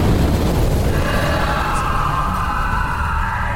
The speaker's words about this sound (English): So it's a few seconds of what feels like forever of hesitation before a huge explosion rips through the night.